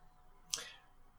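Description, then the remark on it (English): A single sharp, crisp click, like a computer mouse button being pressed once while clicking on a token, with no talking. “Is that perhaps because you're clicking on his token?”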